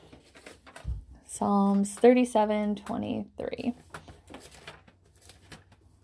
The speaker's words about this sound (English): You can probably hear my pages turning as I'm getting there. Okay. One more page,